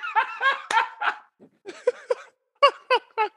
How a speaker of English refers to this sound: Our hairy animals howling at you.